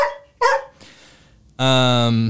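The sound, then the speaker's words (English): A male dog barks in a few short, sharp bursts, then lets out a longer, drawn-out bark that sounds almost like a whine, loud and clear with no talking over it. “Well, he won't bark.”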